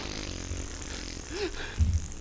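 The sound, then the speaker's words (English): A voice makes a short, low, buzzing fart imitation near the end, preceded by a brief rising vocal squeak, against a faint hiss of background noise. “Like, you just be sleeping and then you hear just a loud ass fart.”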